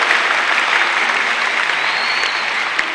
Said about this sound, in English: Hallelujah. Is it clapping? You are clapping. I didn't know.